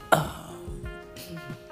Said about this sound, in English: I'm going to close my doors while we talk about these type of topics. Like I said, this is a different type of... That's my door closing.